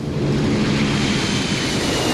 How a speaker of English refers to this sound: Or maybe the sound of a jet plane at the airport.